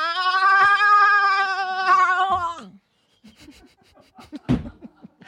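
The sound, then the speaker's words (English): A person gives a loud, sustained, wavering bleat imitating a goat for about two and a half seconds, followed by brief quieter voices and a short burst of laughter. “Wait, do you want to see my goat?”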